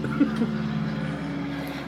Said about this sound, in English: Why is a plane flying over?